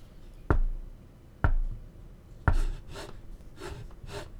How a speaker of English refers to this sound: The stairway seems like it's just going down to a cellar or something, but I think this is the right door down here. Let's see. They said to knock 3 times.